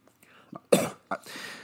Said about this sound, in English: Sorry, could you hand me another cup of water through the podcast feed? I'm getting the cough.